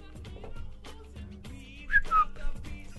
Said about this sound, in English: That does sound like what a Midnight Whistler is, though, now. Not a fucking Midnight Whistler's back in the neighborhood again. Can you hear him whistling before he's don't like, oh, look.